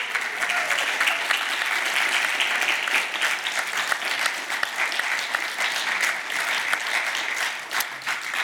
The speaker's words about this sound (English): For those that don't know why we're clapping,